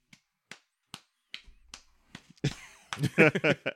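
Half a dozen sharp hand claps in a steady rhythm, roughly two per second, then a burst of loud voices and laughter takes over at the end.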